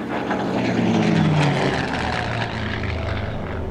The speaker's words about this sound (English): Take off at the witching hour in your seaplane.